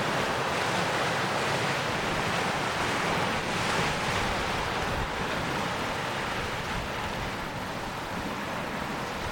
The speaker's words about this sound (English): Just, it's not really battering the shore, it's just rising and slurping and sloshing and then easing back down again.